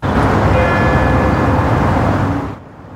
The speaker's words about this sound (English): The St. James Anglican Church rang its bells 215 times today to honor the victims of the former Kamloops residential school.